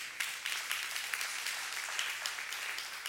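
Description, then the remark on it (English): An audience claps together in a steady, dense burst of applause, many hands overlapping into a bright, crackling wash that holds at an even level with no voices. “I know that's worth a hand clap, amen, because it's true.”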